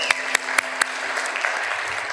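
A small audience claps for a couple of seconds after a short musical cue, with a few sharp, loud claps standing out at the start over a steady patter of lighter hand claps.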